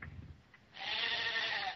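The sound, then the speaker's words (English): A sheep among many sheep lets out one loud, drawn-out bleat, wavering and nasal, after a brief stretch of low background rumble. “Look at the sheep, we're coming.”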